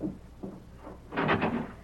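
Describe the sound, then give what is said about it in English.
A few dull, low thumps at a steady pace, then a louder, rougher burst of rattling noise, like a door being knocked on and then opened. No one speaks. “Then, there's the door.”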